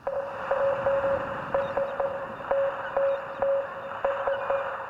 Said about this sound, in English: You're not fooling me. That sounds like Morse code.